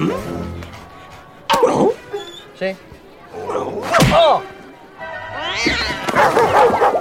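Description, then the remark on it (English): Sharp snapping flicks on a dog's nose, each followed by the dog's high, whining yelps, repeated several times, with a brief spoken word between them. “To cause a dog to discontinue any action, you simply flick it on the nose.”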